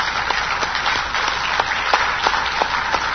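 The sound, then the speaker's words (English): An audience applauds, with many hands clapping at once in a dense, steady patter that holds an even loudness throughout, a few sharper claps standing out; no one speaks over it. “I just want to applaud you all.”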